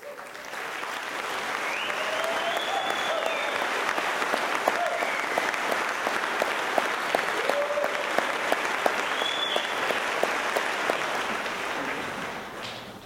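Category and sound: crowd, church audience applause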